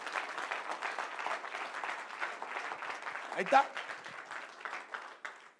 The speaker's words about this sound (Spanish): Un aplauso al Señor.